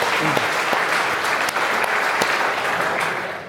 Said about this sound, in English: Who came in the XJS, by the way? Yes. I salute you, sir. Look at that, a round of applause.